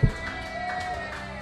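An audience applauds and cheers for a performer being introduced at a live show, a steady, dense wash of clapping that holds at an even level throughout, with a faint sustained tone underneath and no clear speech.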